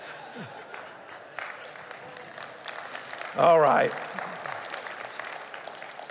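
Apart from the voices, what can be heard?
audience clapping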